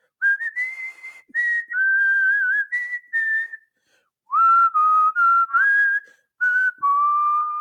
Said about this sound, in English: the warden loves when you do that whistle. Why don't you go up there? She's tried to ban me from whistling in the house.